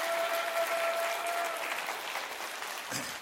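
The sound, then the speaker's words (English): A church audience claps their hands together during a sermon in a dense, steady burst of applause, sustained at an even level before tapering slightly at the end. “Clap your hands, say, I'm going to receive that in the name of the Lord.”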